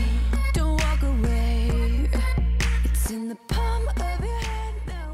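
A pop song plays loudly and steadily, with a sung melody over a deep, pulsing bass beat and regular sharp percussive hits, briefly dropping out for a moment near the middle before resuming.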